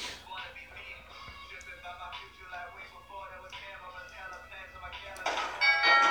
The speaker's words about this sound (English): Yo, she is on edge. She put... How she jumped at the doorbell sound.